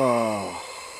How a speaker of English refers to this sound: Jesus Christ, did a demon leave your body? Pretty much, yeah. All right. That was a yawn. You're gonna make me yawn now, you fucker.